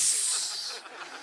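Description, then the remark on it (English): A voice imitates a snake with a sustained hiss, loud at first, then tapering off into a softer, breathy fade over about a second. “It's the best snake I've got.”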